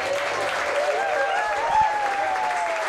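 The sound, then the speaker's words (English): A crowd claps and cheers steadily, a dense wash of applause with whoops and whistles rising over it, loud and sustained throughout. The audience at an improv comedy show is cheering for the lineup of comedians. “But this lineup, like, just make some noise for this lineup if you know who's...”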